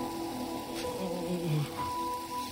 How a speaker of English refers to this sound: I could hear it also from deeper inside. It sounded like the bathroom faucets were running as well, flooding the entire house.